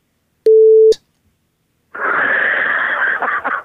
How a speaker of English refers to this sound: And the guy went, the answer is, I'm going to beep this out.